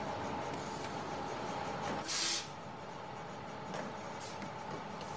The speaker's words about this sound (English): Now, just bear with me a moment. I'm just about to board the Arneson bus.